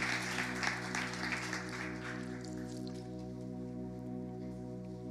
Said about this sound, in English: Hey, let's clap our hands for the worship team.